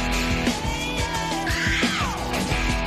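A person screams loudly, the cry swelling and then sliding down in pitch, layered over dense, pounding music with a steady beat.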